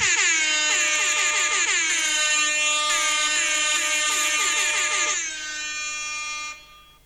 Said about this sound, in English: You heard those air horns, I hope?